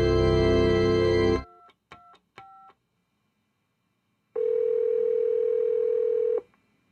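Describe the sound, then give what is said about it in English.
A loud telephone dial tone cuts off, followed by three quick keypad beeps as 911 is dialed, a brief silence, then a long steady ringing tone on the line. No one speaks. “I'm going to phone 911.”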